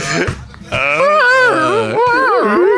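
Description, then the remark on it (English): A person mimics a dog whining with a loud, high, quavering voice, pitch sliding up and down in a few drawn-out wails after a short opening sound, no words spoken. “That dog start whining again.”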